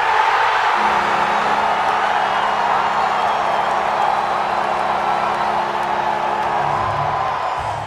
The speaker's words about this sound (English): But at the Cotton Bowl, with 85,000 people and not a real horn, the horn only coming through the PA, the crowd overwhelmed the horn by a lot.